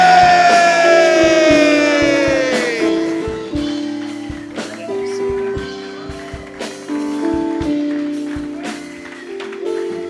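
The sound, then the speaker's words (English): A church audience claps in quick, uneven bursts and shouts in victory; a long, loud cry slides downward in pitch at the start, while steady sustained musical tones hold underneath. “Ladies and gentlemen, with a hand clap and a shout of victory, join me.”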